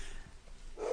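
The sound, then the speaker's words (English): Dogs barking, with one sharp bark rising near the end of a brief moment over low ambient noise. “My kids are deciding that it's time to bark at everything that moves.”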